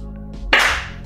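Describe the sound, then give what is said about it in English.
A single sharp hand clap, made to mark the start of a recording, cracks out loudly about halfway through, its bright burst trailing off quickly over a low, steady background hum. “Do you want me to clap? Or mark it?”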